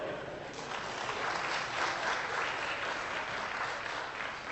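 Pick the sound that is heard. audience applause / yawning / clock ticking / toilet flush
audience applause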